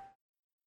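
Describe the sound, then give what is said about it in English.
A brief, loud bell-like ding from a soundboard notification sound, clipped short almost as soon as it starts and followed by silence. “I mean, that was the bell sound I had on my soundboard, reminded me of an idea I totally had.”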